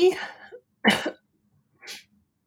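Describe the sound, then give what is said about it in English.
A few harsh coughs in quick succession: a raspy first one, a sharp louder hack, then a softer short cough after a pause, with silence between. “Excuse me if I'm a cough.”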